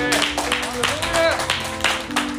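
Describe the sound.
A church audience claps hands in praise in a steady, even rhythm, roughly three claps per second, over sustained musical tones and voices.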